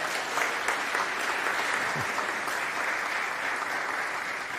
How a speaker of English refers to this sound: And I think I see a few people applauding. I'm going to go ahead and let you do that.